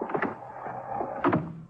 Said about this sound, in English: Get in and close the door.